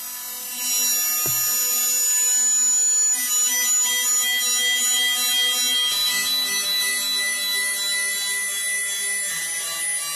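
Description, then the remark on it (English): Experimental feedback-only electronic music made with self-built devices: dense electronic feedback drones with stacked steady harmonic tones and piercing high whistles, punctuated by a sudden low thump and abrupt shifts in texture. Sustained, loud, with no voices. “who has been doing feedback-only music since 1988”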